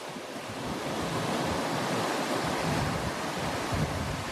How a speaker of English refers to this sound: The waves draw international surfers by day. By night, those waves carry small fishing boats called pirogues into the dark, crashing water.